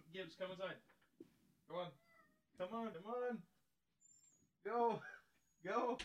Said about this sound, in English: Hold one second. My cat is literally yelling at me to open this door. He hears our anger.